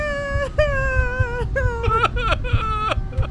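A brother and sister crying in high, wavering wails, a run of drawn-out sobbing cries with short breaks, the voices overlapping toward the end over a steady low rumble.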